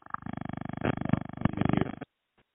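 A loud, rapidly pulsing buzz of line interference, a distorted, garbled crackle that stutters steadily for about two seconds and then cuts out abruptly into near silence.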